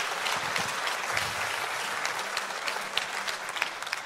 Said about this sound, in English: Hey, both in Indiana and in Blairsville, if you appreciated this word, can we give Robbie a round of applause today?